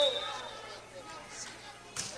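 A single sharp slap of a volleyball being served down the middle cracks out near the end, during game two of a match between Ravenna and Shelton, set against a gym's murmuring crowd and echoing background noise.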